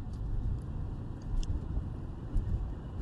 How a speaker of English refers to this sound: I misperceived the road. So I'm driving at night.